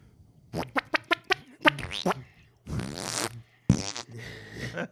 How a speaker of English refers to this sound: That was not only, that was a wet hot fart, too. It was a series of wet hot farts. Searing series. Yeah, it's so scalding that it just went right through all the garments.